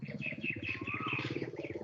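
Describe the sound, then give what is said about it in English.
Birds keep up a busy, continuous chorus of rapid, pulsing quacks with higher chirps and tweets mixed in, sounding muffled as if picked up through someone's open microphone. “Oh, somebody's got their microphone on and it's the birds are quacking.”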